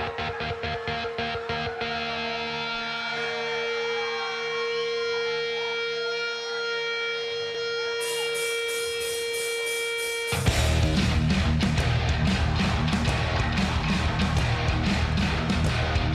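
A live rock band plays a deep-cut song in San Francisco, opening with long, sustained, wavering guitar tones, then drums and heavy, tight, rhythmic chugging guitars crash in loudly and keep driving. No one speaks.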